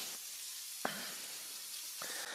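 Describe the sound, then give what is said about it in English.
A steady, bright sizzle of meat frying in a hot pan, with a couple of sharper hissing bursts as a sauce mixture is poured over the meat. No one speaks. “now we're going to pour the sauce mixture over the meat.”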